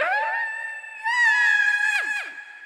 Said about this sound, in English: Suddenly, she let out a scream of frustration, her voice echoing in all directions.